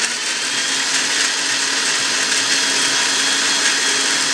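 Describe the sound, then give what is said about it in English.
A blender mixing a shake with mixed berries roars loudly, its motor whirring steadily with a dense, gritty churn, running without pause and with no voices over it. “Now, I have to come slip back into my swamp, because people in the house complain about my blender makes too much noise and wakes them up.”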